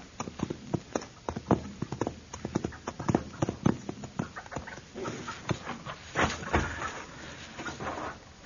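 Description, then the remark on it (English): The hooves of a horse being scared away clip-clop in a quick, uneven rhythm, sharp hollow knocks repeating steadily over several seconds at moderate loudness with some background rustle. “Your horse is scared away.”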